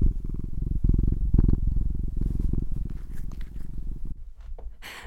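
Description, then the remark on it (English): A cat named Birthday purrs steadily, a low continuous rumble with a rhythmic pulse, fairly loud throughout, with a few small clicks and rustles near the end. “I am here with my cat Birthday, who is purring up a storm.”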